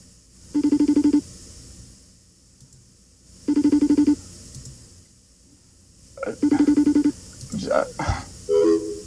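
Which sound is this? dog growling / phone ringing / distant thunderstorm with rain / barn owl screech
phone ringing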